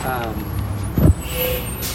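A city bus rumbles up, its engine low and steady, with a short burst of air brake hiss midway and a faint whine lingering after, over street background.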